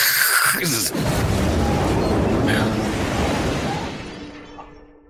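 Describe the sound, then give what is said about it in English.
A voice imitates a giant explosion going off inside General Karthax's body: one deep, rumbling, muffled boom that starts suddenly, holds for a few seconds, and slowly fades away, dull rather than sharp. “A giant explosion goes off inside General Karthax.”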